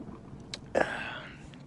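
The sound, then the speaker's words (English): A brief slurp of a drink by Onision: a small click, then a wet, airy sucking noise lasting under a second, fairly quiet, with no one talking. “Oh, God, I hate how he slurps.”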